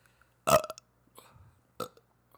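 A loud burp with a raspy, wet quality, followed by a softer gurgling stretch and a second shorter belch. Nobody speaks, and it is quiet in between.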